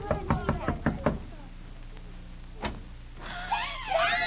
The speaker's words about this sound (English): Well, just knock at the door and you'll find out. Go ahead, knock.